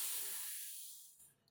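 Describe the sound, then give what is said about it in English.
A long, breathy exhale of smoke after a drag on a cigar: a soft, airy hiss that starts strong and gradually thins out and fades over about a second and a half, with no talking. “He takes a long drag of his cigar.”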